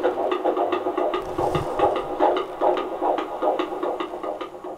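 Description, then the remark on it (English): The fetal heartbeat of a baby boy on a doppler monitor, found after about a minute of searching, a fast, steady whooshing throb repeating a couple of times per second over a muffled, hissy background, with no one speaking. “We've still got a heartbeat. And it took about a minute to find him.”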